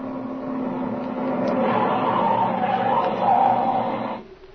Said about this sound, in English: Hey, there comes a car now, Speed. And boy, he's sure traveling, too. Yeah. Yeah, I guess that's the sheriff, all right.